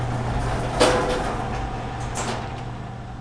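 A heavy docking bay door slides open after the flight crew finishes its landing procedure, with two airy whooshing bursts over a steady low mechanical hum. Moderately loud, with no talking.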